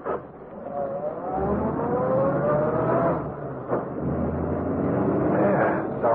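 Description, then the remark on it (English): The engine of a car that a prospective buyer is thinking of buying runs loudly, its pitch climbing steadily as the car accelerates away, with a brief dip and then another rising surge toward the end. “Meet the ex-soldier who was thinking of buying this car.”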